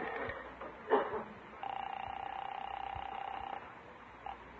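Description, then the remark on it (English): A telephone being dialed to call Irene: a brief clatter, then a steady, faintly pulsing tone lasting about two seconds, ending with a short blip. Fairly quiet, with no one speaking. “Yeah, I better phone Irene and tell her what's cooking.”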